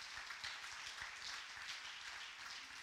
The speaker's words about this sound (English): And I think you ought to clap your hands and thank God for it.